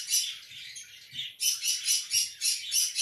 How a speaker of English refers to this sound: Sorry about, the screaming parrots.